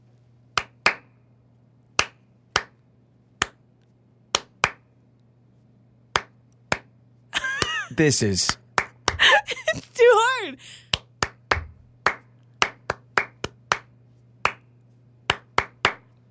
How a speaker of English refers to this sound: All right, you're going to clap your song. All right, here we go.